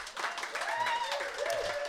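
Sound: audience round of applause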